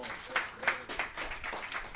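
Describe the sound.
A church audience gives a clap offering, clapping in a steady, dense patter of many hands, with a few sharper claps standing out, while voices carry on underneath throughout.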